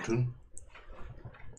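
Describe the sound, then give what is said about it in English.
A couple of sharp, brief computer mouse clicks, spaced apart, over low murmuring voices in the background. “Okay, I was just clicking around.”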